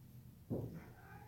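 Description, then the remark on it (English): Cats play-fighting and biting each other, a big cat and a smaller cat, heard as a single short, strained cat yowl, fairly soft and lasting under half a second, with no talking. “Would you guys stop biting on each other? You guys are being hilarious. The smallest cat right now is, like, actually...”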